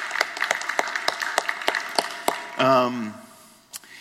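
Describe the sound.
Audience applause of steady, evenly spaced sharp claps for about two and a half seconds, thinning out before a man's voice speaks briefly over the last few claps.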